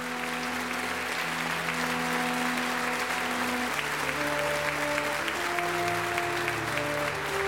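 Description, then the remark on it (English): Sustained, dense theater applause fills the whole clip at a steady level, with sustained musical chords playing underneath that shift pitch partway through. “Thunderous applause and another successful night here at the Playhouse.”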